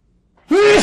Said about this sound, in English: Go sneeze.